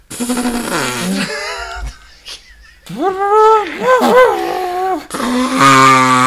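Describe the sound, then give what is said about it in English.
A person loudly imitates an elephant trumpeting, making a few blaring, nasal calls that swoop up and down in pitch, with a brief quiet gap in between. “No, I was gonna try to do it like an elephant.”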